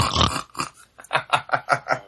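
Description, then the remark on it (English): A person imitates a pig snort, a nasal ingressive voiceless velar trill: a rapid series of rough, nasal snorts drawn inward, about seven rattling bursts in quick rhythm, moderately loud, with no talking. “that, of course, is my favorite sound of all, which is the nasal ingressive voiceless velar trill.”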